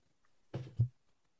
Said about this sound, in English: Don't be clicking your mouse there. No, it's just …. I want both hands up where I can see them. Okay. She's clicking her mouse. She's Googling.